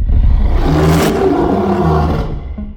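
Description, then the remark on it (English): A loud, deep animal roar rumbles continuously for about three seconds, swelling and growling with a rough, throaty texture and no pauses or speech; a recreation of a 1933 film monster roar made from lion and tiger growls, reversed, with a few human grunts mixed in. “Then what they did was reverse the tape and sprinkled in a few human grunts.”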